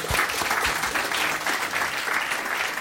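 An audience applauds in a steady, dense round of clapping, a bright wash of many hands at fairly even loudness throughout, with no voices standing out.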